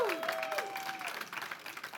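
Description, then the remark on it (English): An audience at Simple Church applauds first-time visitors on a Mother's Day morning, a dense, steady wash of many hands clapping at moderate volume, with a brief tonal whistle or feedback-like tone sliding in at the start. “If this is your first time here, this applause is for you.”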